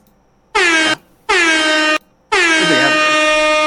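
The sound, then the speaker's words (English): Three loud air horn blasts in a row, the first two short and the third held longer, each a brassy, harmonic-rich blare with brief silent gaps between them. “All right, so now that our good friend Airhorn has made an appearance”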